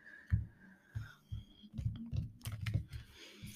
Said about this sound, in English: I said I was just gonna go with what it is, but I don't know if I shuffled right. So let me do it one more time.